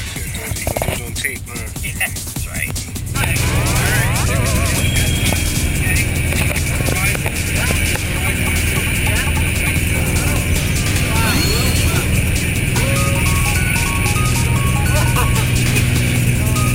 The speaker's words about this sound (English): I think this might be the plane. This is it.